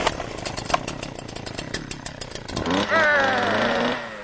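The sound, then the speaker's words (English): A borrowed chainsaw being started in New Jersey sputters and coughs for a couple of seconds, then catches and revs up into a loud, rising whine before easing off slightly near the end. “But starting a borrowed chainsaw is another thing altogether.”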